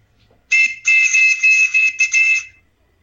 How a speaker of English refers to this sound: And a replica of the Captain Crunch whistle. Ooh. And you know, this thing was always that he had to put the finger above the hole and right. then make a whistle. So let's see if that works.